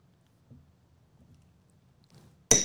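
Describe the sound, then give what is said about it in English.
A single bright clink of glasses touching in a toast, sharp and ringing, comes right at the end after a stretch of quiet, low background rumble. “All right, I'm ready. Cheers. Salute.”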